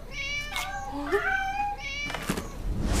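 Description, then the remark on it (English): Cats meow in quick succession, several drawn-out, wavering cries overlapping, with a short pause between bursts and no talking. “Which house do you want to go to first? The cat lady. Trick or treat. It's go time, kitty cats.”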